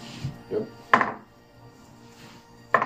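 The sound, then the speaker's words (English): Heavy metal dice clatter across a hard surface: a few soft taps, then a loud, sharp clack, a quiet pause, and a second solid knock at the end. No one speaks. “It's a heavy dice. Well, it is metal.”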